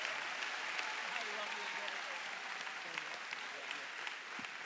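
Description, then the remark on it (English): Steady applause from an audience, a dense wash of many hands clapping at an even level throughout, with faint voices mixed in underneath; the round of applause is kept going for King Jesus. “Come on, keep that round of applause going for King Jesus.”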